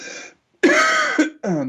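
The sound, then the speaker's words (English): A person clears their throat harshly in several rough, strained, loud bursts, like a choking cough with short gaps between the rasping efforts, while trying to get a cough drop into their mouth. No talking. “I'm sorry, I'm sort of choking to death here. I'm trying to get a cough drop in my mouth as I'm speaking.”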